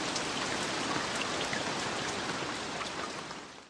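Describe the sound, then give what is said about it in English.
Steady rain pouring down, a dense, even hiss of drops spattering on surfaces, holding constant throughout before easing slightly at the end. No voices. “Oh no, va a llover.”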